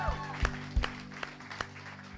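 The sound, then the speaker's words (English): A few scattered hand claps from a gathered crowd giving a hand clap for Jesus, sharp and uneven, spaced out over a steady low hum, with no one speaking. “Can we give a hand clap for Jesus?”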